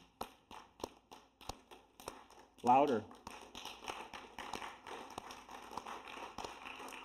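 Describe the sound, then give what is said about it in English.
A single steady clap repeats at an even beat, then a voice calls out briefly and many people in the audience join in, each clapping in a different rhythm, building into a dense, overlapping clatter of uneven rhythms. “All of you start clapping.”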